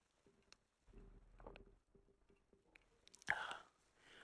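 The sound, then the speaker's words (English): Quiet mouth sounds of someone sipping a drink: soft clicks and a low murmur, then a short, louder slurp near the end, with no talking. “I'm just steady sipping on a drink.”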